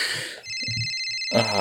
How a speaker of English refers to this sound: Somebody's calling you on the cell phone. Apparently it's a cell phone. I answer the cell phone.